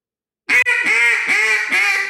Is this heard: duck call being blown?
yes